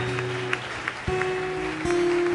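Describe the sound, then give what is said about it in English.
The Koinonia audience claps along in a steady rhythm as people come forward to join those being born again, while sustained keyboard or organ chords hold underneath, the chord changing twice during the short stretch. “Koinonia, are you still clapping?”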